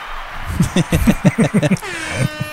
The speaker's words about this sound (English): That deserves an air horn.